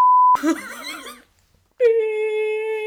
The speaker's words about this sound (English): Beep. Yeah, that's all you're gonna hear. Beep.